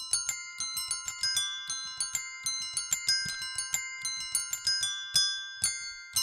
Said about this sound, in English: Those were bells, played by Chester the Squirrel.